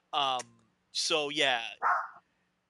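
dog barking

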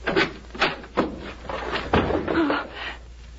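closet door being opened

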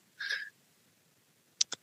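computer mouse clicking

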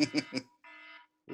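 timer alarm going off

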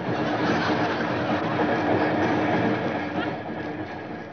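train running on rails

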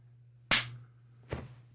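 hand clap

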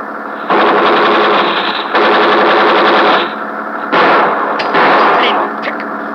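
gunfire

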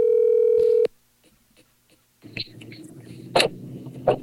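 telephone dial tone

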